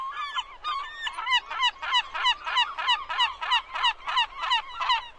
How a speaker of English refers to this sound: make it sound like a flock of seagulls is going through my hotel room right now. Can you do that? Probably could.